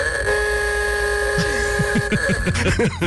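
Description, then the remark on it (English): A sustained, buzzy old car horn blares as one long, steady, loud tone with a harsh nasal edge, while some low, wavering sounds bubble up underneath toward the end. “especially of his old car, because, you know, I honked the horn and it sounded like this.”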